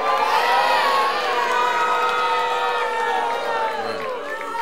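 A large crowd at a live election-night edition of The Daily Show cheers loudly and steadily as Florida is called for George W. Bush, a dense roar of overlapping shouts and high-pitched yells that holds for several seconds before easing off slightly at the end.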